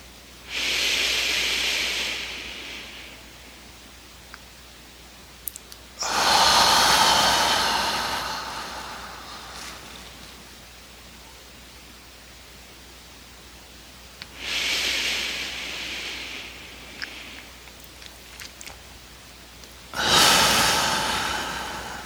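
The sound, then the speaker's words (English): Slow, deep breaths drawn in and pushed out at a steady, unhurried pace during a controlled breathing exercise, about four long airy breath sounds with quiet pauses between them and no talking. “Returning to normal breathing.”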